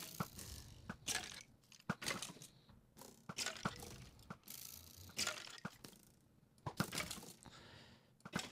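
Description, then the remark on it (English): A video game bow with infinite arrows fires again and again in quick, uneven succession, each shot a crisp snap with a mechanical click, over a low background hum and no voices. “Glad we have infinite arrows.”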